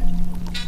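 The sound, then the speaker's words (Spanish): A drink is poured into a glass as it is served, in a short burst of liquid sound, a brief bright ring rising near the end, over a steady low background hum. “Venga, yo le sirvo un trago porque esto sí toca celebrarlo.”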